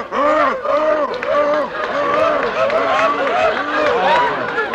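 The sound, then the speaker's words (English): Four seals bark over and over in a loud, overlapping chorus, each honking call rising and falling in pitch, with hardly a pause between barks throughout. “Oh, for heaven's sakes, four seals.”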